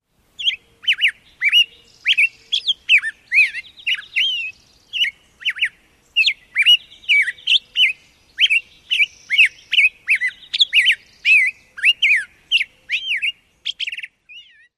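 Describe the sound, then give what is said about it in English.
A western tanager's dawn chorus song: rapid, repeated short burry phrases delivered nearly continuously and clear, with no pauses longer than a moment, and no voices present. “The second bird we listened to, bird number two, was the western tanager.”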